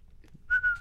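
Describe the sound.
Someone whistles an imitation of cricket chirping: a steady, mid-pitched tone with two or three quick pulsing bursts layered on top, lasting about half a second over a faint low rumble.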